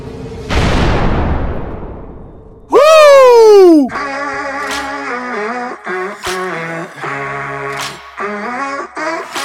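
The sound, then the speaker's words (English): A rocket blast-off effect: a loud rushing roar that slowly fades, then a sharp descending electronic sweep, after which a voice starts talking with short pauses. “Launch sequence activated. 5, 4, 3, 2, 1.”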